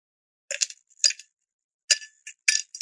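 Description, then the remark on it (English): Ice cubes clink and rattle against glass in a few bright, sharp bursts with short pauses between, like cubes being dropped and stirred for a cocktail. No one speaks. “Ice. Yeah, I'm making a cocktail.”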